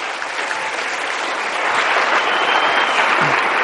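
Sustained audience applause for Rabbi Zechariah Wallerstein, a dense, steady wash of many hands clapping that grows slightly louder and fuller after the first second and a half, with no voices standing out.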